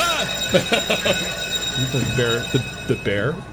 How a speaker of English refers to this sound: The bell always scares me when that thing goes off.